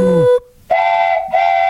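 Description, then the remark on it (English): A loud steam train whistle sounds in two long, bright blasts separated by a brief pause, with no one talking, opening on a quick falling tone. “the conductor of the Scalzo and Tausch Super Bowl 57 train to Arizona. Chugga, chugga, choo-choo.”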